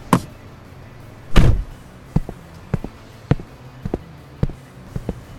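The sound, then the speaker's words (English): A heavy truck door slams shut over the low, steady rumble of a twin-turbocharged, 3-cylinder, 2.0-liter camless engine, followed by a string of sharp clicks and knocks spaced about half a second apart. “Loud truck you got there.”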